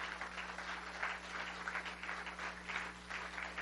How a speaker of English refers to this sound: Give Jesus a hand clap today.